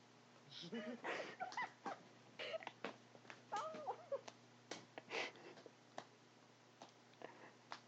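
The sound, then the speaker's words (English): A female pet cat meows repeatedly in a series of short, rising and falling cries, over a low steady hum with occasional sharp clicks between the calls. “Eat my cat so she can stop.”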